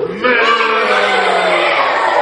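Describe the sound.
A crowd of people at a show imitates a really mean cow, producing a loud, sustained chorus of low, growling moos that blend into one continuous bellowing roar lasting a couple of seconds.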